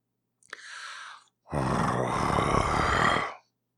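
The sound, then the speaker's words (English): A person imitates a growl: a brief breathy intake, then a loud, sustained, rough and rumbling low growl lasting about two seconds before cutting off. “So hopefully that's like a growl that like affects your body.”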